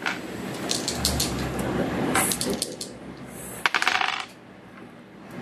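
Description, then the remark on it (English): Dice are rolled for an alertness roll, rattling and clattering for several seconds and ending in a final burst of sharp, bright clicks as they tumble across a hard surface and settle. No voices. “Wrong die. Give me an alertness roll.”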